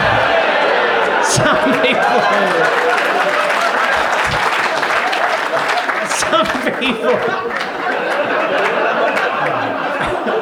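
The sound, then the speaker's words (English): A large audience claps steadily throughout, dense and continuous applause with scattered laughter and chatter mixed in, fairly loud, never letting up. “The catchphrase is not yet over. Do not applaud until the end.”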